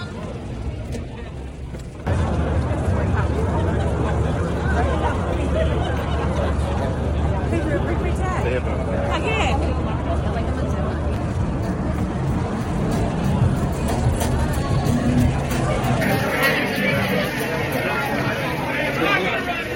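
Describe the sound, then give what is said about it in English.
Steady crowd chatter fills the scene aboard a dinner boat, many overlapping voices blending into a busy murmur over a low engine-like rumble that runs almost the whole time. “So we're on a boat right now for a dinner.”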